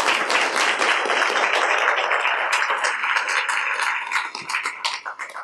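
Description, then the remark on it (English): A crowd applauds a panel, bursting into sustained applause, dense and steady clapping from many hands that thins out toward the end as individual claps become distinct. “Let's have a big round of applause for our panel.”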